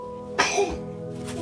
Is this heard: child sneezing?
yes